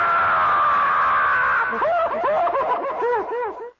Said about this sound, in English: Tell your mother or your girl that you had your finger cut off, and then show it to them and hear them scream.